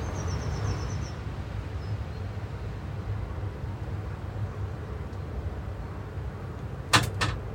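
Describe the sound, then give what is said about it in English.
Strong wind of about 30 miles an hour, gusting up to 35, roars and buffets steadily on a mild morning with a deep rumble throughout, a faint bird chirp early on, and a brief double clatter near the end. “Weather report, very, very windy, 30 miles an hour, winds gusting up to 35.”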